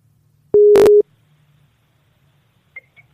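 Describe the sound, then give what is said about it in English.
A single loud, steady, mid-pitched Skype outgoing call ringing tone lasts about half a second, then gives way to near-silence with a few faint, brief electronic blips. “This is Jeff from the Unpopular Opinion Podcast, calling you up on the old Skype”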